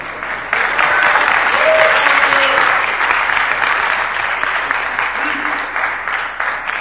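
An audience at a church service breaks into steady applause for the reader of a long scripture passage, a dense wash of clapping that swells quickly and holds at full strength for several seconds before easing slightly, with no one speaking over it.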